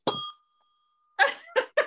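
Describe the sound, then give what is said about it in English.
A bright bell ding sound effect rings out, its clear tone lingering for about a second before fading, followed by three quicker, clangy hits in rapid succession. “The bell for that one.”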